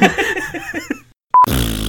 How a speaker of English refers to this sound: Now I'm just gonna edit in just a long fart noise instead.